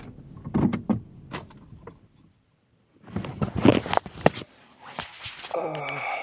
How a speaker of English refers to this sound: As you can hear, I'm back in the car.